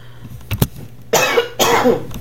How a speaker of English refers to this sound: There I go. I can't go through one damn podcast without coughing. I apologize.